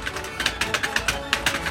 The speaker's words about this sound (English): I got a light-up mechanical keyboard, $73, down from $83. Wow. Listen to this.